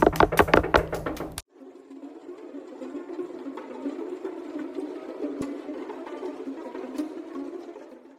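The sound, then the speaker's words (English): A quick series of about eight loud, heavy knocks on a family's door by British soldiers (Redcoats). The pounding stops abruptly, leaving a low, steady background hum with no voices. “There they stood in horror as the British knocked on their door.”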